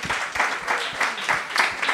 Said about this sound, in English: Right. Round of applause for that costume, guys.